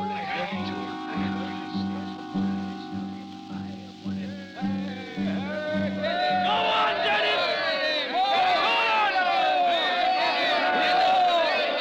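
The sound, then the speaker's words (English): A large crowd gathered in a town square for a meeting murmurs over a steady droning tone, then swells into a loud, dense roar of many voices shouting and cheering together, continuous for the last several seconds. “A meeting in the square. He's speaking to the crowd.”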